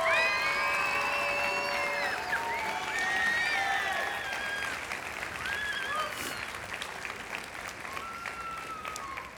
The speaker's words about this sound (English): Can we give her one more round of applause?